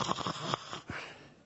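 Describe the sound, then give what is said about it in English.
A voice imitates snoring while asleep on a plane, with a few quick, raspy snorts, followed by one more rough breathy snore and a fading exhale, with no talking. “Esther said I was snoring.”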